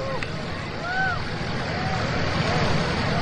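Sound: rocket engines roaring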